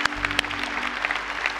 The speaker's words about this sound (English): You're in this room today in the midst of applause.